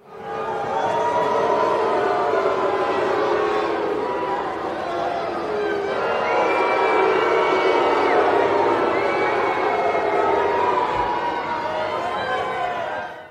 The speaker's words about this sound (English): Nobody's making any motion. Nobody's moving. Nobody's making anything happen in the crowd. You just hear this overwhelmingly piped-in crowd noise that we heard from the Thunderdome.